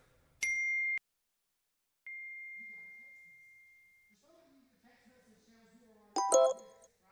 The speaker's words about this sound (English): And you're going to start your day with text messages, notifications coming in.